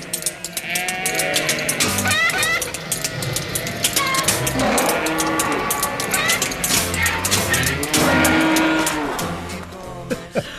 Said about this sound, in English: Well, we needed something that sounded like a comedy theme, but it also had sheep in it. And so let's play the whole thing without talking over it.